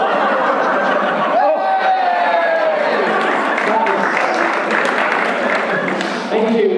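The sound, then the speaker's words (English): A snooker audience applauds steadily throughout after an in-off, a dense wash of clapping mixed with scattered laughter and chuckles, and a voice talking over the crowd. “From the applause, people at home might think that that was a success shot, but that is 4 points to Me1 for an in-off there, the first in-off of the game.”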